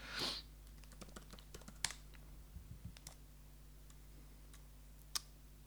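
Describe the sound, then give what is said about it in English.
Irregular clicking of computer keyboard keys, a run of quick taps with brief pauses and a few sharper strokes, quiet, over a steady low hum. “I'm typing it in.”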